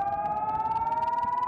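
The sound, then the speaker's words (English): A loud, sustained civil defense air raid siren in Israel, sounded as rockets are launched into the country, wails steadily on one slowly rising tone, with a faint rumble of background noise underneath and no voices. “First, initiating a siren in the area, then launching a rocket that flies directly towards the incoming missile and detonates when it's near it.”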